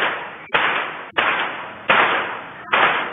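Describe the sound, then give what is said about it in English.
Five loud, sharp gunshots from a gunman's attack at a Mexican resort ring out in quick, uneven succession, each crack followed by a brief echoing tail that runs into the next shot. No one speaks. “5 bangs believed to be gunshots ring out.”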